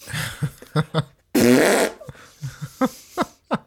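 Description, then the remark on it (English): A loud, raspy fart from a person with an upset stomach turning over fast blasts for about half a second, rumbling, surrounded by a series of short sputtering pops before and after, with no talking. “She looked like she was asleep, and I had the bubble guts, so I tried to turn the other way fast, and I farted loud as hell.”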